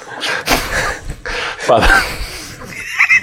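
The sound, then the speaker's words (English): A person vocally imitates a horse's whinnying neigh, for Sun Tzu riding in on his horse, a loud, wavering cry mixed with breathy snorting bursts, lasting a few seconds. “Sun Tzu rides in on his horse,”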